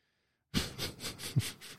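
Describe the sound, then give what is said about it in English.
A person imitates sniffing and huffing nail polish remover, taking a series of quick, rhythmic nasal inhales, about five or six pulsing huffs in a row with no talking. “Christ, I remember just wanting a buzz one time and pulling out the nail polish remover, just not snorting the shit up my nose, but sniffing, huffing it.”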